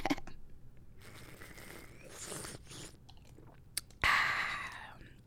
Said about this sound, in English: Let me take a sip. Hold up.